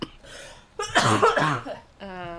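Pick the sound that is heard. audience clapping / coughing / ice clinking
coughing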